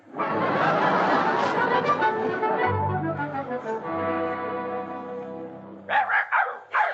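animal, dogs barking and yipping

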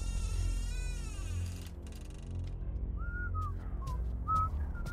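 human body sound, person whistling a tune

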